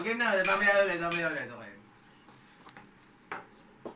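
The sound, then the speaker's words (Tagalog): A voice calls out briefly, then a few light glass clinks follow at irregular intervals, fairly soft, like glasses touched together in a toast. “Cheers muna. Cheers.”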